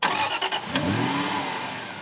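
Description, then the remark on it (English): A small 1.4-liter, 85-horsepower Tercel car engine revs up loud, its pitch climbing steadily after a few brief bursts at the start, then holding a strained, rising drone with no voices. “Good old 1.4 liter engine.”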